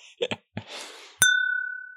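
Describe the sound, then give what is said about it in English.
Glasses clink together in a toast, one bright ringing chime that sustains and slowly fades, preceded by a few soft knocks and a brief hissing rustle. “We lift our glasses to you, knowing without you, we wouldn't be here. So cheers.”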